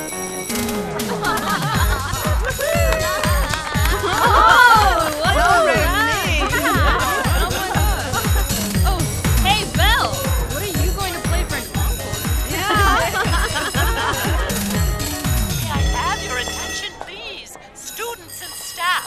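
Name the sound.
school bell ringing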